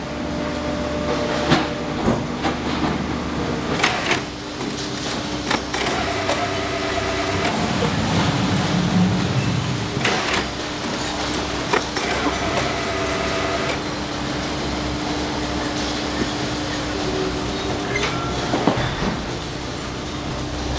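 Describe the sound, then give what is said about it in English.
An industrial baler compressing sorted recycled mixed paper into bales of about 1,600 pounds each runs with a steady, loud mechanical rumble and hum, broken by sharp metallic clanks and bangs scattered throughout, with no one speaking. “So off the baler it comes, and now we're gonna go load the tractor trailer.”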